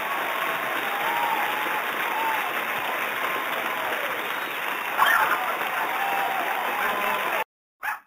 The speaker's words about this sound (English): And now the dogs are barking. I think they can hear that applause.